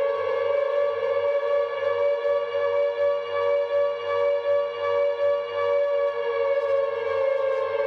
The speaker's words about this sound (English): Along with the sound clip, Konami wrote, "Close your eyes. Always scary Silent Hill 2 siren."